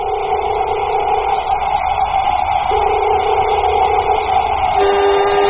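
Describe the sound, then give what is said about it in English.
A space suit filling with air in an airlock, helmet fastened, makes a steady, continuous hissing rush layered over a low droning hum, holding an even loudness throughout and shifting slightly in tone near the end. “Suit inflating. Suit inflating.”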